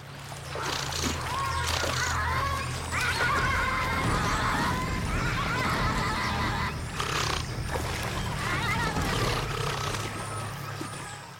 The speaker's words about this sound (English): And this and the other like 14 videos I subsequently watched taught me that a brawl with giant river otters sounds a lot like the worst game of Marco Polo.